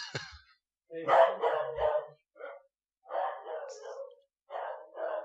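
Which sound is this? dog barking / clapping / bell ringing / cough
dog barking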